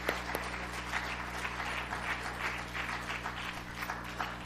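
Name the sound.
audience applauding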